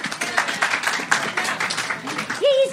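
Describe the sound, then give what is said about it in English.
A small audience claps in a quick, scattered burst of applause lasting a few seconds, with voices mixed in and a short cheer rising near the end. “Clap yeah. if you'd make out with Kenny, you guys.”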